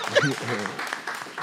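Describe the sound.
A short burst of audience applause, a patter of many hands clapping at moderate volume, with voices talking and laughing over the start before the clapping carries on alone.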